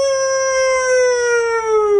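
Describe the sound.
A person in a studio imitates a wolf with one long, loud howl: a steady, tonal wail that slides gently downward in pitch and holds for the whole moment, with no talking.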